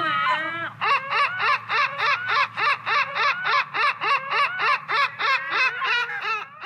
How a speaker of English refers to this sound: We did reach out to a spokesperson for seagulls to comment, and here's what they had to say.